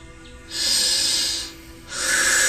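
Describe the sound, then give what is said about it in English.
Two long, deep breaths, each a broad airy rush rising and fading, with a short quiet gap between them and no talking, taken during a guided meditation. “Breathe in and breathe out. Make sure to focus on your breathing.”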